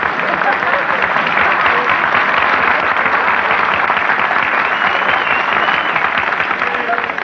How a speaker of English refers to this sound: Nobody was supposed to applaud there.